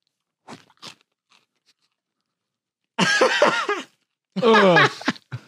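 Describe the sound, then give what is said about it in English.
A couple of quick crunchy bites of popcorn, eaten with the face in the bowl, followed by two longer muffled voiced sounds that rise and fall, as if someone is mumbling or groaning with a full mouth. “Because my whole face is in the popcorn now.”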